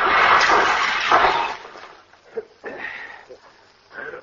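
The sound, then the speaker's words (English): A loud, rough crash of crunching and breaking from a car hitting a tree, easing into scattered knocks and rattling debris over the next few seconds. “Look out, pal. You'll hit that tree.”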